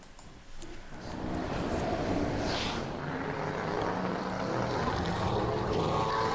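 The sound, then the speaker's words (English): A supercar's 8-litre W16 quad-turbo engine roars into a loud, steady drone after a brief quieter start, a dense rumble with a raspy, whooshing edge that holds for several seconds. No one speaks. “It's reached 311 mile an hour, and it is powered by one of their famous W16 quad turbo 8-litre motors.”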